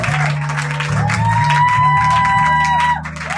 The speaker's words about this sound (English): He is not here, but I want you to join me with a clap offering to honor this great man, to celebrate this man.